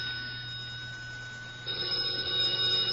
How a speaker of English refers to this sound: It's the telephone. I know, I hear it, but where is it? I'm going to put that extension cord on a deep-sea fishing reel with a strong string. It's right near me somewhere. Here, under the evening paper.